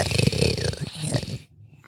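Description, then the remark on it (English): A person imitates the deep, rough growl of a creature the size of a large predatory cat, one gravelly rumble lasting about a second and a half, loud, then it cuts off abruptly into near silence. “And you notice his growls are a little deeper now.”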